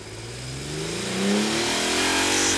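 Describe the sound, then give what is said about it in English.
A car engine revs, its pitch climbing steadily as it accelerates, with a loud, continuous roar and no voices over it. “I'll get the car. You get in the car.”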